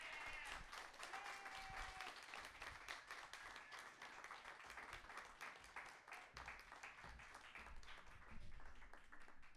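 A crowd applauds steadily for nearly ten seconds, a dense, even patter of many hands clapping at a consistent loudness, with faint whistles or cheers briefly rising early on.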